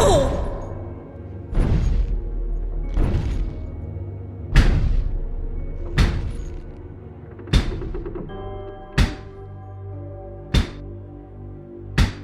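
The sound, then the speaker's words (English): Heavy, booming knocks on a door land one at a time in a slow, steady rhythm, about nine blows, each ringing out with a deep resonant tail. No one speaks. “I was awake, sweating through my sheets, and someone was apparently at my door.”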